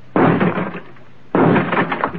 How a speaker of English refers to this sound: Stand away from the door, Skipper. I'll have to blast the lockout.